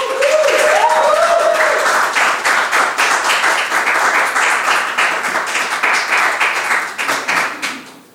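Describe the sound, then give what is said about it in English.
Loud audience applause for a guitar-playing Americana musician being introduced on stage, a dense wash of many hands clapping that holds steady for several seconds, with a short whoop or cheer rising early on, then tapers and fades out at the end. “I don't know if y'all want to be applauding for me like that, because I got some bad news.”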